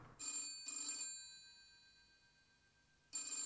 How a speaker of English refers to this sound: Phone's ringing, dude.